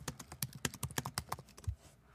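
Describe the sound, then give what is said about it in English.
Rapid keyboard typing while looking something up: a quick, slightly irregular run of crisp clicks for about a second and a half, then stopping, with no voices over it. “That clicking.”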